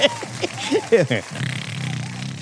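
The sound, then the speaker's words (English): A voice imitates a snore, voicing the comic onomatopoeia "Snork!" for Mockingbird sleeping on a private Parker Industries jet in Amazing Spider-Man 25: a few quick voiced sounds, then a low, rattling, buzzy drone that lasts over a second, moderately loud and fairly steady. “It's just like, it's supposed to be like a snoring sound.”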